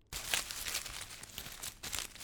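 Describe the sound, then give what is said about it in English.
A steady rustle of the leafy twigs of a blossoming branch being shaken, dry and crinkly, with a couple of louder swishes partway through and no voices; a sound effect for a branch that knocks a man out of a wooden rowboat. “Here's the blossoming branch that knocks Alec out of the boat.”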